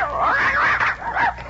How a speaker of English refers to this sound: Maybe my dogs ain't so trained. The left one seems to be crying. Oh, that's Sonia. She's lying under your chair. Ah, I think you maybe stepped on her little tail when you stood up.